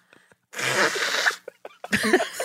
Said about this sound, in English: are you blowing your nose again? I am. I'm having an allergy attack. Feel free to pause while I deal with this.